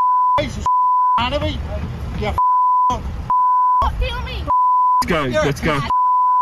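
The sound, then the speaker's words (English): A man shouts angrily at Deputy Prime Minister and Nationals leader Barnaby Joyce in a roadside verbal onslaught, in loud, choppy bursts, while a steady high censor bleep repeatedly cuts in between them, about five long beeps over several seconds. “Wow, I haven't heard that much beeping since I watched Kitchen Nightmares on TV in America.”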